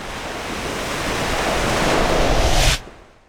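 A big ocean wave crashes against a pier: a loud, hissing roar of surf swells steadily for about two and a half seconds, then drops away abruptly, with no voices.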